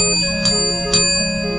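A doorbell chime rings out clearly with two struck notes about half a second apart, each leaving a sustained, humming metallic tone that hangs over the short passage with no talking.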